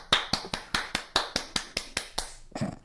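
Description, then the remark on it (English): A single pair of hands claps about eleven times in a quick, steady rhythm, each clap sharp and crisp, ending with a softer, muffled rustle. No one speaks. “Yeah, I think you deserve some applause and some acclaim.”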